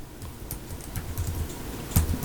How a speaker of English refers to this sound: Hey, you're typing too loud, man. Am I? Yeah, man. Dang. Shit. Yeah. My bad.